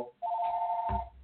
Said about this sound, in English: Wait, let me talk to these people. We got a phone call.